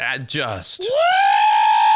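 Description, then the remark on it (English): Cats fight outside, yowling and screaming at each other: a few choppy wails followed by one long, loud screech that rises and then holds steady for about a second. “there are absolutely cats fighting outside right now.”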